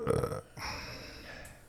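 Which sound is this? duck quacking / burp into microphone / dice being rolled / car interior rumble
burp into microphone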